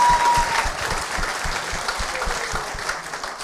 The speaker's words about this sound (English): You know, speaking of the Forum, and yes, round of applause.